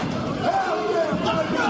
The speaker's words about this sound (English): And this crowd comes alive for Jacob Fatu, at least in this moment. They always do. They always do.